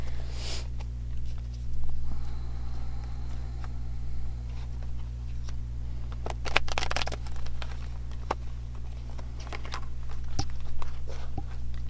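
Tarot cards being shuffled: scattered soft papery rustles and clicks, then a quick burst of louder riffling flutters midway and a few sharp snaps later, over a steady low hum with no talking.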